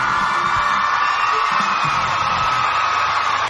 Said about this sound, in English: who's actually here in the chat, by the way, so give him an applause.